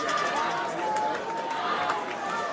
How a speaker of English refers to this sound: Charger fans are excited down there. You hear them screaming.